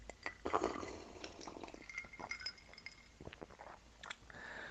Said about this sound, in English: On that note, I'm going to have another big sip. Hold on.